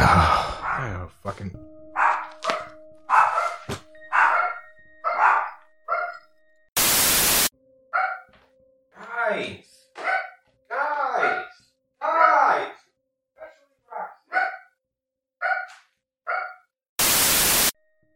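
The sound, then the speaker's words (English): Dogs bark over and over in a steady run of short, whining yelps. Two loud bursts of harsh static cut through partway and at the end. “Fucking dogs, man.”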